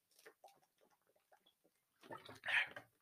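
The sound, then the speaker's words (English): Noisy sounds of water being poured and gulped down in a short burst near the end, after a stretch of quiet, muffled talking. “Hold on, let me get some of this water.”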